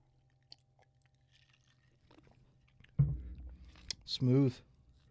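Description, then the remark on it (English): Sipping and gulping of a 95% alcohol drink after a few quiet seconds, with wet mouth clicks and a swallow, then a short strained voiced exhale right after swallowing. “I'm dying to take a sip of this shit though.”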